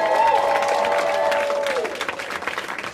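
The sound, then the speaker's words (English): A crowd bursts into loud applause for the speaker's mother, mixed with high whoops and cheers, a dense patter of clapping that gradually thins and softens over a few seconds. “Clap it up for my mother.”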